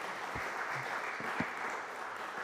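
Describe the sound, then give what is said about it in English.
An audience claps in a sustained round of applause to thank people for sharing, a dense, steady crackle of many hands at an even loudness throughout, with a few scattered heavier claps standing out. “Do you want to give them a round of applause to thank you for sharing?”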